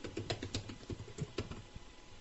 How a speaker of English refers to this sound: I pressed tab after typing in my username.